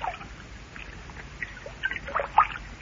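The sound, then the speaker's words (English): Light water sloshing and splashing as a person steps into a water-filled bathtub, with soft scattered splashes that grow a little louder and busier toward the end. Fairly quiet, with no talking. “Now step in. I'll help you. Take care. The water may be hot, and the tub may be slippery.”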